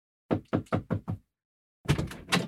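A quick run of five sharp wooden knocks, then a drawer is pulled open with a short, rough sliding rumble. The sounds are fairly loud, and no one speaks.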